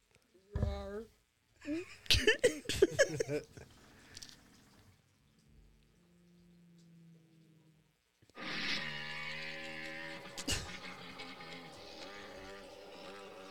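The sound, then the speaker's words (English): A person imitates a T-Rex roar, growling and roaring with their voice in rough, harmonic bursts, pausing with a low hum, then letting out a longer, louder sustained roar. “I found out what a T-Rex sounds like. What does it sound like?”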